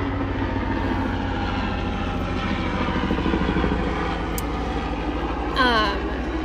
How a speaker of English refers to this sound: Speaking of the airport, here's a lovely helicopter making its appearance into this episode.